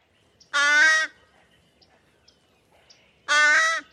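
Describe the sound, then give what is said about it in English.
Two loud, drawn-out nasal caws from a juvenile American crow, each about half a second long and spaced well apart, with faint background noise between them. “Here's some juvenile nasal American crow caws.”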